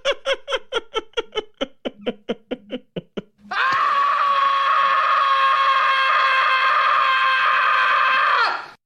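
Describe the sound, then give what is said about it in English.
A sound effect of comedian Gilbert Gottfried's scream: a quick run of about a dozen choppy, laugh-like vocal bursts speeds up and then breaks into a loud, high-pitched scream held steadily for about five seconds before cutting off. “Gilbert Gottfried scream.”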